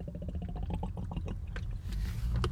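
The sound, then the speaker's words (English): Someone drinks water, a run of quick gulps and swallows with liquid sloshing, followed by a sharp breath at the end. “Water break already.”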